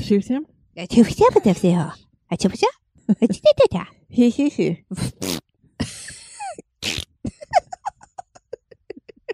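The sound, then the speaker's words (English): Loud voices are interrupted by a few short, buzzy bursts: fart noises blown with the mouth, like a raspberry, scattered among the talking. “I didn't fart. I know you did, but your mouth did.”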